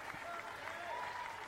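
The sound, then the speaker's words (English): A crowd at a baseball game cheers and applauds steadily throughout, cheering on a batter who got back up after a pitch hit him in the head. A dense wash of clapping with raised voices and a few whistle-like shouts rising above it, fairly loud and continuous. “Everybody gives him they're cheering him on.”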